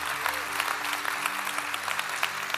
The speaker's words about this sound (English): Come on, let's clap for everybody that said yes. Come on.